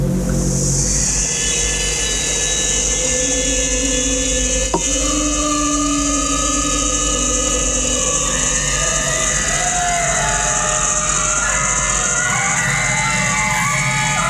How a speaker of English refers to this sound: But here, when the whale is coming, all we hear are whale sounds and this kind of minimalist, it's like a screeching or scratching over, I don't know, steel drums or something.